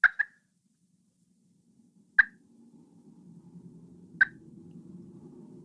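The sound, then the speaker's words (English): Sharp, short clucks from a turkey pot call: a quick double cluck, then two single ones spaced about two seconds apart, each crisp and fairly loud over a low background rumble. “But on a pot call or a slate call, a cluck is really easy to make. It's just short staccato note.”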